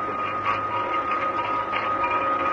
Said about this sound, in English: It sounds as if someone's sawing. Yeah, that's just what somebody is doing with a hacksaw, if I'm not mistaken. Okay, you follow me and keep quiet. It's in the workshop here.